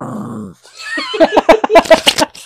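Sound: poodle growling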